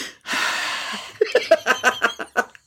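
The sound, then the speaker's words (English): A long, forceful breath pushed out during breathing exercises, then a quick run of about eight short, voiced puffs of air in a steady rhythm. No talking. “And I heard like a little, it sounded like someone let the air out of you.”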